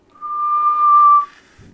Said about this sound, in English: No, but I'm good at whistling. Ready? Watch this.